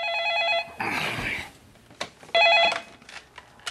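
A telephone in a film rings in two short, loud trilling bursts separated by a brief rustling clatter, with a few sharp clicks toward the end.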